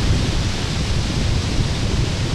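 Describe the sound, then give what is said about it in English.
A steady, full-bodied roar of ocean surf washes continuously at the shoreline of the Jersey Shore, loud, with no voices and no distinct breaks between waves over the short stretch. “And I just thought I'd send you a voice message to tell you that I am standing with my feet in the water. I have a drink in my hand and the sound of the ocean in the background.”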